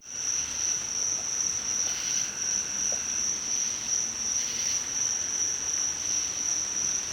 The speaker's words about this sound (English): here's some crickets from North Carolina and I believe a frog in the background.